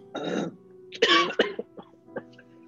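A person coughs and clears their throat in a fitful series of harsh bursts, a strong one first, then a cluster of shorter hacks that trail off quieter.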